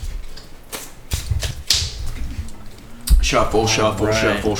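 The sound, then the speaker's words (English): A deck of cards is shuffled, with quick papery flutters and sharp snaps in the first half, followed by people talking and reacting over it. “Shuffle.”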